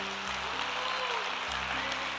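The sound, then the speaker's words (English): A church audience applauds steadily to welcome people into the family of God, a dense wash of many hands clapping at an even loudness throughout, with no one speaking over it. “Can we put our hands together this morning and welcome some people into the family of God?”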